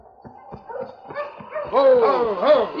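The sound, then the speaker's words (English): A team of husky sled dogs, led by King, barks and yelps excitedly as they are urged onto the trail, their overlapping, rising cries growing louder and more frantic over a few seconds. “On, you Huskies.”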